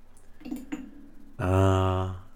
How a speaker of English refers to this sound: Yeah, we all rang our little bells, and we were, you know, we celebrated the stock going live.